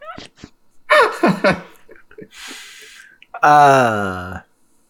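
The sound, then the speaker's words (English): Breathy exhalations right into a microphone, with short voiced huffs early on, a soft airy breath in the middle, and a long, loud voiced sigh near the end. “I was just breathing.”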